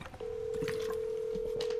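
A steady, unbroken telephone tone starts after a brief moment and holds clearly to the end, like a line being dialed to place a call to thedarkroom.com, with no one speaking.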